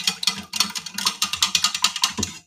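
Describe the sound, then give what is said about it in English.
Stirring in a container, with quick, regular scraping strokes about five per second. The swishes are bright and hissy, fairly loud, with no talking. “Okay, you can hear me stirring.”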